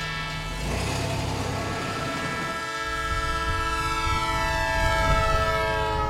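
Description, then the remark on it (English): A train rumbles past on a hot, dry afternoon, its horn blaring in a long, steady chord over the heavy roar of the wheels. The sound stays loud and continuous throughout, with no voices. “But when the train passed, he was gone.”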